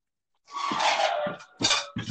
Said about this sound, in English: Hey, Kenai, stop licking the fucking water dish.